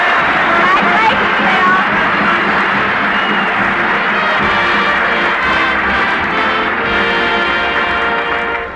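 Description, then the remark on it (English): A studio audience breaks into loud, sustained applause for a proud new father, mixed with crowd hubbub, a dense wash of clapping that holds steady for several seconds before tapering off at the very end. “Applaud loud. The baby's listening in.”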